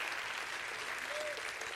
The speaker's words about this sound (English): I'm going to live because Christ lives in me. Can you clap your hands and rejoice to that?